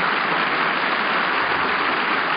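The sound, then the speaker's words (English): A crowd claps steadily, a dense, continuous wash of many hands applauding with no breaks or voices, holding a constant loudness for the whole couple of seconds. “The sound stages of Hollywood are far away from the applauding audience.”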